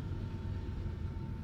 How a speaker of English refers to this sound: Well, that's a big one. Yeah, it's a noisy train.